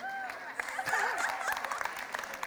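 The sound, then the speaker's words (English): A crowd of parents applauds in a steady, dense patter of many hands, mixed with indistinct chatter and a few high-pitched voices rising over the clapping. “All the parents are clapping.”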